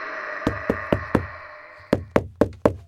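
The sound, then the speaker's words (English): Sharp knocks on a wooden door in two quick groups, four raps then a short pause and four more, crisp over a low steady background hum. “they flew down the spiral staircase and knocked on the door to Snape's office”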